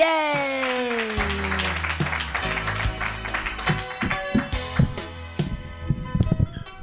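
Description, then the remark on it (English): At a comedy show, an audience applauds as the next comedian is introduced, with scattered clapping that thickens into sharp, uneven claps toward the end, while a descending musical tone and low sustained notes sound underneath early on. “Clap your hands together for your next comedian,”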